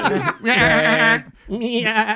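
A goat bleats loudly: a short cry, then a long wavering bleat and a slightly shorter one after a brief pause, with no talking.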